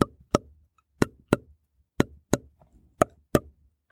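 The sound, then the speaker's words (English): Popcorn, made from sun-dried corn, popping in oil inside a lidded pan: sharp, hard knocks arrive in evenly spaced pairs, four double pops in all, each crisp and wooden-sounding with a brief rattle after, and no voices. “There's something inside the pan and it's knocking and it wants to get out.”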